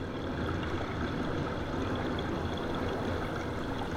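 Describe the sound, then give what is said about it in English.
A steady, dense rush of flowing mountain stream water with bright trickling detail, continuous and even throughout, with no voices; a stream recording from the Cascades. “The sounds that were the most evocative of that space were these sounds of water trickling and water flowing.”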